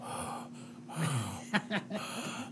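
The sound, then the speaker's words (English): A voice imitates heavy, raspy breathing into a phone: a few wheezy inhales and exhales in uneven bursts, with a faint steady hum underneath. “Fucking breathing all heavy and shit.”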